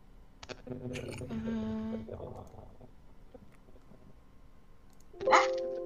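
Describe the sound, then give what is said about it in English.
A single sharp sneeze bursts out near the end, louder than anything before it, following a stretch of muffled voices and small vocal noises. “I feel like that was that a sneeze or a dog bark?”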